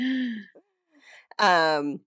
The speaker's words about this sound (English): It was a well-timed cough. Sounded on purpose. Yeah. Sorry, popping up a hairball.